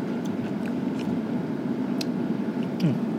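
Someone chews khanom khai pla, a chewy, mochi-like Thai dough snack tasting like khanom tan, topped with coconut, making faint moist squishes and a few small clicks at irregular intervals over a steady low hiss, with no one speaking.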